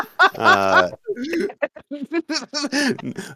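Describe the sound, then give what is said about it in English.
A person imitates a horse's whinny with a short, loud, wavering vocal neigh lasting under a second, followed by quick talking. “But, you know, normal horse sounds is what you hear.”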